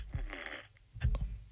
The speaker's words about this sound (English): He's thinking. Or he's asleep. He's asleep. Hang up on him. It's fine. That was funny. Love that little snore in there.